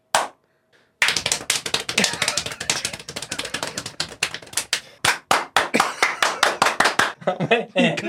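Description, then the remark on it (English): Rapid hand clapping with a hollow, cupped-palm pop, the concave palms trapping air, a fast uneven burst of sharp claps that slows into steadier, louder individual claps, with brief pauses between some. “It's all about the concave of the palms trapping air.”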